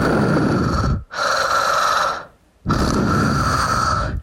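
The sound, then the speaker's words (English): A voice imitates a husband's heavy, raspy mouth breathing while lying in bed: three loud, rough breaths in a steady rhythm, each separated by a brief silent pause, with no talking. “My husband was lying behind me in bed doing mouth breathing.”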